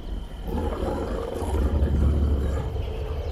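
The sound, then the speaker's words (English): Deep, rumbling growls from two giant night wolves the size of grizzly bears, sustained and loud with a heavy low-end roar that swells midway, without any voices. “See those two wolves that are the size of grizzly bears? Those are night wolves.”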